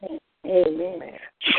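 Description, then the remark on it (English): A single sneeze: a drawn-out, voiced 'ah-ah' wind-up that ends in a sharp, hissy burst, preceded by a brief vocal sound. Fairly loud, with no talking over it. “God bless you.”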